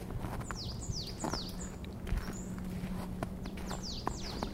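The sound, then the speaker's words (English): Several birds sing repeated high, sweeping chirps in snowy woods south of Amersfoort, over soft crunching footsteps of someone walking through the snow and a low, steady rumble of traffic noise in the far distance. No one speaks. “Do you hear those birds? And if you listen carefully, you may even be able to hear a woodpecker.”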